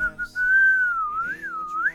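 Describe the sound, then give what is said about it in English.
A person whistles freestyle, a single clear tone gliding up and down in a wavering, improvised line for about two seconds, fairly loud with no talking. “Can I hear a little whistling now? A little freestyle?”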